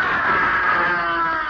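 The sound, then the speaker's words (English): A loud, sustained scream of pain and terror rings out for a second and a half near midnight at a seaside cottage among sand dunes, shrill and strained, steady with no other voices or talking around it. “It's almost midnight, when suddenly there's a scream of pain and terror.”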